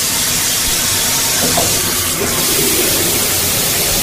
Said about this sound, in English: Okay, the sound of the shower running is at number 6. These are the most comforting sounds, by the way.